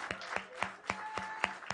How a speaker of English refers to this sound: That is wonderful. Can we give a big clap offering? Can we say amen?